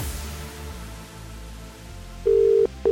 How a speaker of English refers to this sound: One ring. Two rings. Three rings. Four rings.